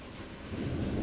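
A stormy wash of steady rain-like hiss with a deep, rolling rumble of thunder that swells louder partway through; no one speaks.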